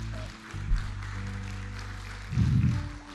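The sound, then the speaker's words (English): Steady applause from a crowd giving the Lord a round of applause runs throughout, layered over sustained low keyboard chords, with a brief swell of louder low-pitched sound near the end. “Come on, would you give the Lord a great round of applause today?”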